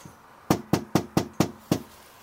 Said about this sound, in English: Should we try the back door? Maybe knock on the door once?